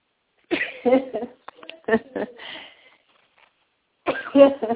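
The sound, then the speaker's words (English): A sneeze, brought on by the heat of a hotel room, comes in a few short, breathy, voiced bursts with gasps between them. It is fairly loud against a silent background, and a final burst arrives after a brief pause. “Oops, here comes a sneeze.”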